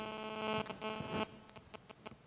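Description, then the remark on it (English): A steady, buzzing electrical hum from a church sound system drones for just over a second, then cuts off abruptly, leaving only faint scattered clicks and low background noise. “Something's humming.”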